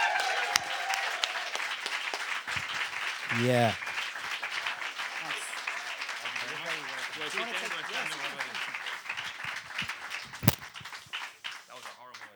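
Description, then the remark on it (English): A live-show audience gives sustained applause for guest Donald Gleeson, a dense steady patter of many hands clapping, with cheering and a few voices rising over it and a brief spoken reply. “If you be give a big round of applause for our next guest, Donald Gleeson.”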